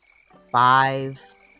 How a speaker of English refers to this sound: Five little bugs flying around the room, buzzing around your ears, annoying you and waking you up, just in all the wrong ways, after a nice restful sleep, as they just kind of fly by your ear